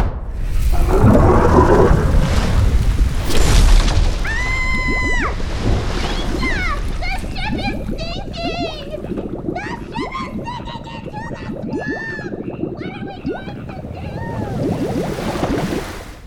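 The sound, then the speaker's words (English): A loud rushing gush of splashing water fills the first few seconds as streams of water are made, then softer watery swishes continue under a flurry of bright, chirping whistle-like tones. “What is this? I can make streams of water?”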